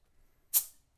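A can of beer brewed with blood orange cracks open with a sharp pop and a bright fizzing hiss that fades over a fraction of a second, followed by a faint tap. No one speaks.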